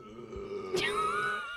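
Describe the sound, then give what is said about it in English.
A long, drawn-out burp, low and throaty with a buzzing, voiced tone, swelling into a rough gurgle midway and holding steady to the end. No one speaks over it. “That was as burped. Far away as I could get.”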